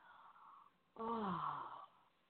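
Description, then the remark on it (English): A person channeling yawns once to clear the channel: a drawn-out, voiced yawn lasting about a second that slides downward in pitch, with quiet breathy sounds before and after and no talking. “And if you hear me yawning clears the channel, the person channeling.”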